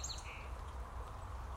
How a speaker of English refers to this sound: The worth within your soul, within the outer world, within these, it's the frequencies of these birds.